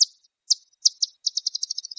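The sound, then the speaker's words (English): Bat echolocation feeding buzz as a bat detects and homes in on prey: a few separate high chirps, then a quickening run of about a dozen rapid pulses, clear with nothing else around them. “Those chirps you heard are the sound of a bat detecting and homing in on some prey.”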